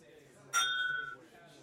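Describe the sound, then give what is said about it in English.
Glasses of neat whiskey touch in a toast with a single bright clink. A clear ringing tone lingers for about half a second before fading, against a quiet background murmur. “Doing a little bit of neat, but first, we still have to cheers.”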